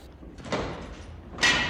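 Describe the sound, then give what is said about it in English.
Double doors swing open into a command center with a soft mechanical whoosh, followed moments later by a sharper, brighter rush of air as they finish opening, fairly loud, with no voices. “The double doors swing open, and you find yourself in what appears to be some kind of command center.”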